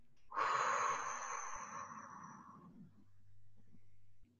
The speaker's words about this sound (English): I can share with you one exercise that I do is just really deep breathing. So what we do is we breathe three times in through the nose and out through the mouth.